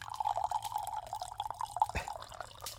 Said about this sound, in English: Okay, I see you pouring it. Some nice glug. Some glug.